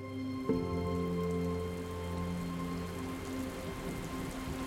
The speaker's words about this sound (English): All of a sudden, I feel a raindrop, one by one, just kind of start falling.